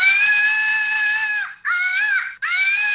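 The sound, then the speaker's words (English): A toy magical flying monkey, the official mascot of the Joel Comm Show, screams loudly, a shrill, wavering screech broken into three long bursts by two brief breaks, with no talking over it. “And you can't see the monkey flying on audio, but you can hear. That's true. The scream.”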